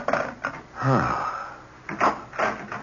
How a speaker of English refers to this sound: Oh, I thought I heard someone come in the back door. I wanted to make sure it was you.